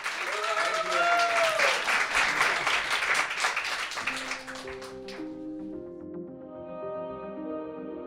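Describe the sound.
A crowd claps and cheers loudly, with a few whooping voices, for about four seconds; the applause then fades as soft music with sustained tones takes over.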